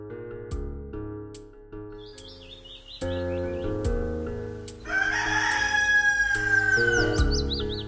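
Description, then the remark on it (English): Bursts of bird chirps trill brightly in the morning as the sun rises, over a steady musical backdrop, joined midway by a long, drawn-out rooster crow that rings loudly before more chirping. “The sun is risen, you start to hear the birds chirping in the morning.”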